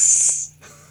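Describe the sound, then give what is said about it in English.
A man imitates a hissing snake with his mouth as the sound of snakes in a snake pit in a film: one loud, steady, breathy hiss lasting about half a second, then it cuts off, leaving only a faint low hum. “I literally when they want the sound of the snakes in the snake pit, it's obviously just this guy going.”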